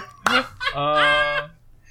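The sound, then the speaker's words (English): A person imitates a goose-like bird honk, loud: a sharp opening burst that stretches into one drawn-out, nasal honk lasting about a second, with no talking. “A different type of bird.”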